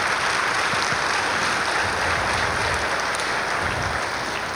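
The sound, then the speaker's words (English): An audience claps steadily for several seconds for InterVarsity staff members standing to be recognized, a dense, even wash of many hands at a constant loud level with no voices over it. “Won't you give these folks a round of applause?”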